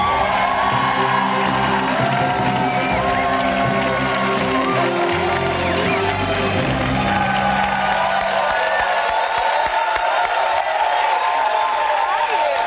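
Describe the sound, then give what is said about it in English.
A large audience cheers, whoops and shouts "Chi-town" together in a loud, sustained roar that fills the whole stretch, with some low tonal sound underneath during the first part, as a guest from Chicago is welcomed onto a show. “Chi-town? Is that what you shouted?”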